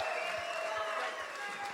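Audience applause for the two people who filmed all the footage shown that evening, a steady, dense wash of many hands clapping at an even level, with a faint high tone running underneath and no one speaking.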